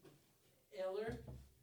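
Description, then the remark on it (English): A door swings open with a short, wavering hinge creak followed by a soft low thud. “Oh, it just opened again.”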